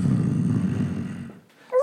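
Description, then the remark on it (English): A wolfhound growls, a deep, rough rumble held steadily for over a second, fairly loud, then breaking off into a brief higher whine. “And when he came near Cullen's fort, he heard the growls of the wolfhound.”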